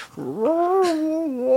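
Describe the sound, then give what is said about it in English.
A single drawn-out, wailing scream from a vixen fox outside, underneath a window, rising harshly then holding a strained, tonal pitch for over a second, loud and alone with no talking. “I saw the vixen the following. How far was it from the door? Underneath the window.”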